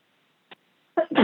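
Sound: sneeze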